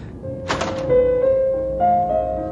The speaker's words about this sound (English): Let's find out what's going on. Right. It's in here. Okay. Open the door.